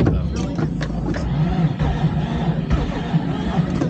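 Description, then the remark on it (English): An old car engine with no compression cranks over as someone tries to start it, with a rough, steady mechanical churn and low rumble, clattering on continuously for several seconds. “I'm like, I don't know if it'll start up, but we'll try. So you can hear.”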